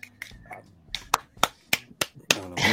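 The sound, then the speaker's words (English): A series of sharp hand slaps as people slap hands together, about seven crisp claps in an uneven rhythm, with faint murmuring underneath and a burst of hissy noise at the end. “We slap hands.”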